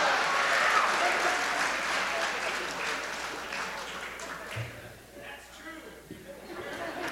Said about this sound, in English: I pretty much got it. That kind of rousing applause.